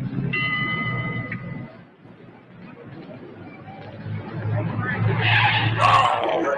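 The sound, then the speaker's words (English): A car crash: a sustained high screech of skidding tires over a rumbling, crowd-like din, then a loud, harsh burst of impact noise with screams near the end. “The greatest car accident you'll ever see in your life.”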